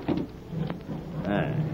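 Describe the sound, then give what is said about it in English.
A drawer slides open with a short scraping rumble and a soft knock as someone looks for knives, followed by a brief vocal murmur as it comes to rest. “Now, where did Decker put the knives? How many times do I tell him to put them in the top drawer”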